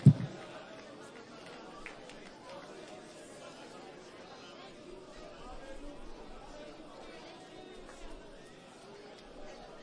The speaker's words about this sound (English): Throw your hands up, your voices, and let's just give God one more round of praise and thanksgiving before we're seated here tonight.